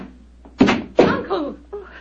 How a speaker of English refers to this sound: Someone's opening the door.